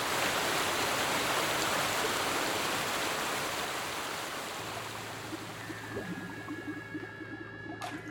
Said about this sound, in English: Seems the harder I listen, the louder the water thunders by, drowning her out. And every time I see her, the river is wider and she's further away on the other side.